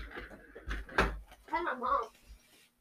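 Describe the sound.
A couple of sharp knocks on a door, close and fairly loud, followed by indistinct voices talking in the room.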